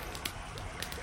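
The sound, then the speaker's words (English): A campfire by a river crackles steadily, with a handful of sharp pops and snaps breaking over a soft, continuous hiss of burning, moderately loud with no voices. “I enjoy the touch of the paddlers and the campfire by the river.”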